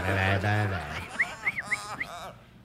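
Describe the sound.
A person imitates a bird call with a drawn-out voiced note followed by four or five quick, high chirps in an uneven rhythm, moderately loud.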